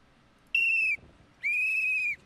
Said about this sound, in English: Oh, is this what she's trying to say? That he's blowing the whistle.